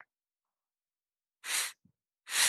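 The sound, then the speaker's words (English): A man breathes heavily: two loud, forceful breaths separated by a short pause, with silence before them and no talking. “I mean, the way he was breathing.”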